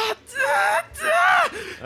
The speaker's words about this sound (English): You start hear a subtle scream. Oh, shit. What the a subtle scream, you say? And it gets louder.